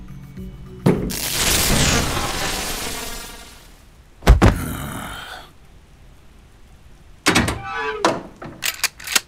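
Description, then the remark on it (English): Heavy thuds and bangs on a door, with a loud rumbling burst early on, then a few sharp, separate knocks near the end. No voices. “If he thinks it's just you, maybe he'll be willing to talk. Go ahead. Knock away.”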